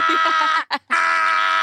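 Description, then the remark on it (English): A voice imitates screaming in two loud, sustained, high-pitched bursts separated by a brief pause, unbroken, with no other sounds. “Like, I feel like she'd be screaming and then I'd be screaming.”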